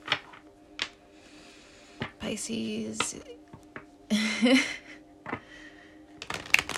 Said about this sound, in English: I am going to be shuffling my tried and true tarot mucha.